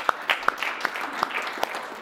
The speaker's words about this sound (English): All right, let's give them a round of applause, right?